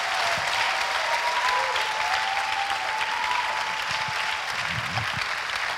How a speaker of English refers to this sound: That was a very hearty clap, but I want you to give a resounding applause to Jesus, the one who paid the price, the reason why we are here.